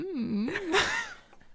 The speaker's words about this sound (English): I keep making the oddest noises into the mic, and I don't understand why I don't back up and make the noise. I forget that like everything is being recorded, so I'll just like make little like weird breathing sounds.